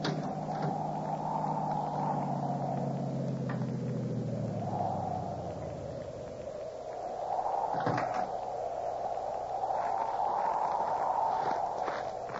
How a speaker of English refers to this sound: That car down there at the foot of the hill just turned in your driveway.